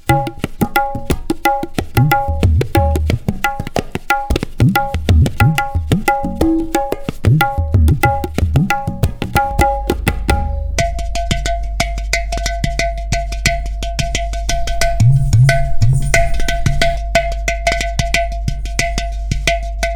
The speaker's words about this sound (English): And then of course here is the very famous tabla. So let's try and make a sound that gives a chai feeling. I'll combine it later, but I'll start with the tabla.